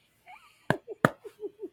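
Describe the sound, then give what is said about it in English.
Two sharp, explosive sneezes burst out about a third of a second apart, set among soft, short vocal murmurs and a faint high whine at the start. “Did she sneeze?”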